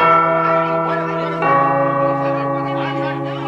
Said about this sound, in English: Listeners out there know that ominous bell from one of the greatest comedy films of all time, National Lampoon's Christmas Vacation.